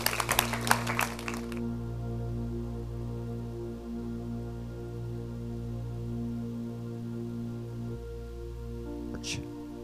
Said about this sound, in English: Give the Lord a good hand clap, Pastor. Thank you. Bless you.